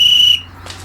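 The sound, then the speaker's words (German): A coach stops a boys' football game with a single sharp, high referee's whistle blast. It sounds loud and lasts about a third of a second before cutting off, followed by faint background noise. “Er pfiff das Spiel kurzerhand ab und nahm die beiden Jungs in die Mangel.”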